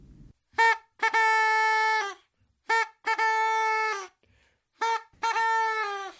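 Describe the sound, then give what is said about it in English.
A kazoo blown in three matching phrases, each a quick buzzy blip followed by a long, steady, nasal droning note. Loud and alone, with short silences between phrases. “what's with the kazoo?”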